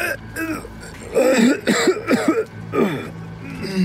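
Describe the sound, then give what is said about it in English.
A strained, choked cough from a person trying to scream, several tight, throaty bursts in quick succession with a rasping, strangled quality, no words spoken. “Disoriented, I squint my eyes against the sudden light, and I try to scream again, but it just comes out as a strangled cough.”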